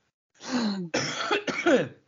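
An angry person coughs and clears their throat in three harsh, raspy bursts over about two seconds, fairly loud, with no talking.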